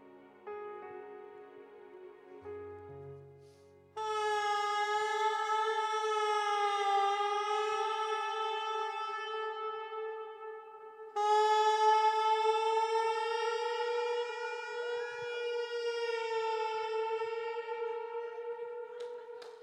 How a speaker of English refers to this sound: Sound demonstrated for you in that clip was a saxophonist rehearsing a sound check in the Hamilton Mausoleum. The Hamilton Mausoleum stands as one of the most iconic and great tour magnets in the country of Scotland.